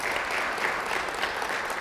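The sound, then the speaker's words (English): A crowd claps steadily for the VBS director, a dense, even wash of many hands with no pauses and no voices standing out, sustained at a moderate level throughout. “And so give her a round of applause to that.”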